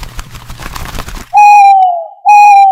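A burst of rough, crackly noise gives way to two loud, drawn-out hoots from a snowy white owl called Mr. Owl, each steady in pitch and lasting nearly a second, separated by a brief pause.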